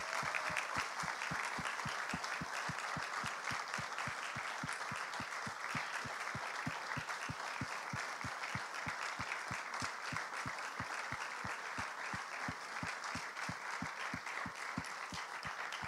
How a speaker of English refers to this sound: So why don't we give them a big round of applause?